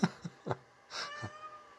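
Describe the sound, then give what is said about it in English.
A cat meows several times in quick succession, short calls with a longer, higher-pitched meow in the middle, fairly quiet against a still background. “I don't know if y'all can hear that. Kitty's here, the whole gang's here.”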